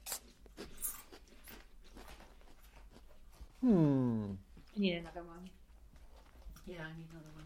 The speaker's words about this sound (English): Crunch.